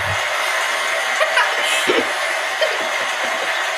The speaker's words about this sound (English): I actually meant to play the sirens, like the police sirens noise, and then I accidentally pressed play. So you got clapping instead.